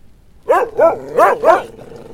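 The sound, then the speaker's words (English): Four loud barks from three hellhounds resembling big mastiffs, in quick succession and a rough rhythm with short gaps between them, then fading off. No one speaks. “And there's the hellhounds.”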